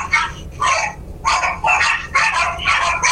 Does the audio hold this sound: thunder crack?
no